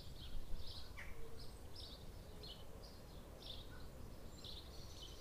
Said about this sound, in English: As well as the usual 4 a.m. dawn chorus of a billion birds. We wondered what they have for breakfast to create such a cacophony.